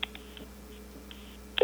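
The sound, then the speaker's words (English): Telephone line tones over a quiet connection while calling a voicemail line: faint steady hum with brief electronic beeps, then a louder ringing tone starting abruptly near the end; the line rings about six times. No one speaks. “I had it where it would pick up right away, but it's ringing like six times now.”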